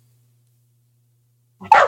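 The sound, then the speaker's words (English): Near silence with a faint low hum, then one sudden, loud bark from dogs wrestling right at the end, cut off abruptly. “Sorry, I got distracted by dogs wrestling.”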